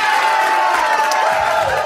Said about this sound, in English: And they clap for her every week.